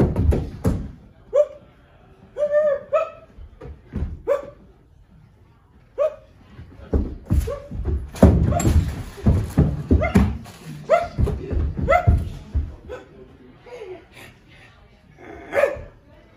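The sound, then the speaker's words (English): A person imitates a dog with a string of short, loud barks and yips at an irregular pace, with a few whiny, whimpering tones mixed in. “This is my impression of a dog.”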